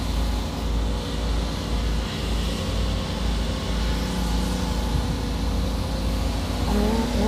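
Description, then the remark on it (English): A steady rumble of a car driving on a street, with low engine drone and tire hiss holding even throughout, no voices, and a faint higher tone near the end. “oh my goodness, this dog just ran across the street, almost got hit by a car.”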